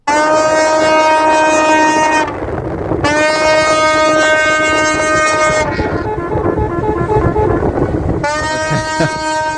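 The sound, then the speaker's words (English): Ship horns sound in the Suez Canal as a stuck container ship is refloated, in long, loud, steady-pitched blasts, two lasting a couple of seconds each and a third starting near the end, over a continuous low rumbling noise. “Okay, that's some sounds from the Suez Canal this morning as they try to float this container ship out.”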